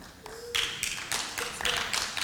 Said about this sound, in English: Yeah, you can give the Lord a good round of applause for Oreos.